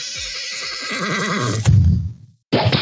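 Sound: horse neighing sound effect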